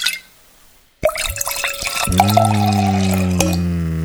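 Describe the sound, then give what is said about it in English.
After a moment of quiet, beer gurgles and splashes into a glass right up close, then settles into a steady, loud pour whose pitch slowly rises as the glass fills. “So let me just pour a little more. Yeah, put that right up against the mic. Can you get a pouring sound?”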